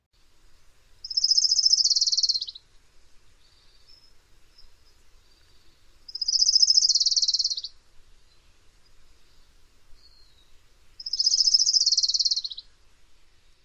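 An orange-crowned warbler sings three times, each song a high, rapid trill lasting about a second and a half that slightly shifts and drops at the end, separated by quiet pauses.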